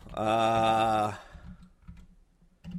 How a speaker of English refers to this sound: Hold on, I'm just looking it up real quick to make sure I have the title right. I'm listening all right. to the number of letters that you're typing.